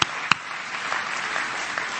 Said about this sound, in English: How about you this morning? Clap your hands again to the Lord and give Him praise.